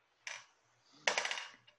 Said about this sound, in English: Steve, roll a 10-sided dice.